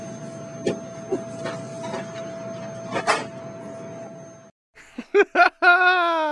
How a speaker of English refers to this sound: So LeBron is trying to fix a paper jam. He's really struggling. He can't get it to work out of the printer.